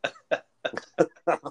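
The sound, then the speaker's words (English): An abrupt cough tangled with a burp, as a person coughs and burps at the same time, breaking into several quick, guttural bursts over a second or so, with short gaps between them and no talking. “I coughed and burped at the same time.”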